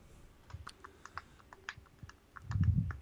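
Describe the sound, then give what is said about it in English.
Typing on a computer keyboard, a quick irregular run of light clicking keystrokes, with a low muffled thump near the end. No voices. “What are you typing?”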